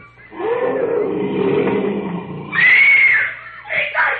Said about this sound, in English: They're just scared by the lion roar. Those lions are a quarter of a mile away.